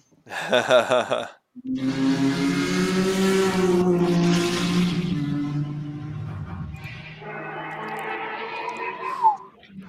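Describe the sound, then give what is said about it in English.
A powerful 1,000 PS Calsonic Skyline race car engine roars past during a run, its harmonic whine rising and falling as it accelerates through, then fades into a higher revving pitch toward the end. “You just see it kind of running through. I don't know if you can hear that engine noise.”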